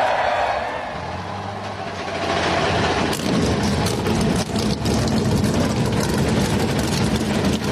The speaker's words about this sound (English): Engines come to life. 16 cars, 16 drivers.